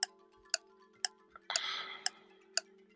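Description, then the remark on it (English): A 30-second countdown timer ticks steadily, about two sharp clicks per second, over a low sustained hum, with a brief brighter shimmering swell partway through. No one speaks. “I'll give you 30 seconds on the clock.”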